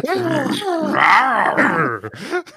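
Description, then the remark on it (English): Human voices imitate snarling dog growls, a loud, continuous rumbling for about two seconds that breaks into a few shorter growls at the end. “Until we meet in the middle and just start growling for who gets to eat the cake topper and then die from diabetic shock.”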